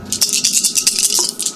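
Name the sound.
dice being rolled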